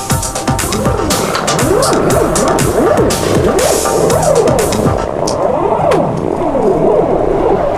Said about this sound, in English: That was a ballad. I thought that was the engine. No, that's a ballad I wrote for my girlfriend. Oh, okay. It's very short.